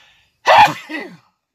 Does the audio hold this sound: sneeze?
yes